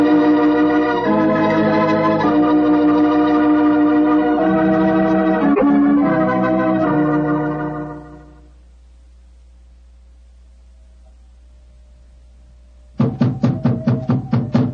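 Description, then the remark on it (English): After sustained music fades into near silence, a rapid burst of loud, sharp knocks on the wooden door of an elephant house rings out, eight or so quick raps. “We must have been knocking here for 5 or 6 minutes.”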